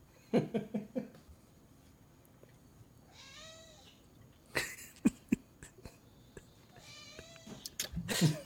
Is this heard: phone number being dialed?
no